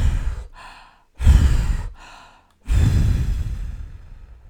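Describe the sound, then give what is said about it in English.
A voice imitates the wolf from the little pigs story huffing and puffing to blow a house down: three loud, breathy blows, each one fading out, separated by quicker drawn-in breaths, with no words spoken. “The wolf huffed and he puffed and he blew the house down.”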